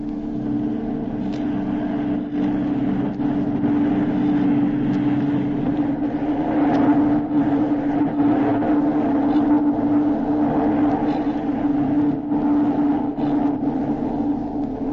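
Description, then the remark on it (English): A steady, rumbling car motor drones throughout as the car turns into a garden, a low engine hum with a strong tonal whine that swells slightly midway. No voices are heard. “See, his car has turned into his garden.”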